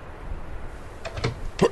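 A door is opened to travelers seeking shelter from a storm: a low rumble gives way to a few sharp clicks and a short creak, ending in a louder knock-like burst, with no voices.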